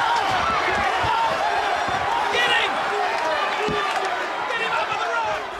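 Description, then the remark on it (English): A single heavy thud as wrestler The Rock is slammed onto the DX bandstand at a wrestling event in Boston cuts through the steady, loud roar of a large crowd that fills the whole stretch. “The Rock slammed on the DX bandstand!”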